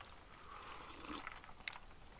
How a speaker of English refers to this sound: Sorry, I'm sipping a little bit of cranberry vodka while I'm talking.